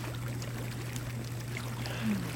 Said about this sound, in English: You lead me outside to your private hot tub and slip inside the warm, bubbling water.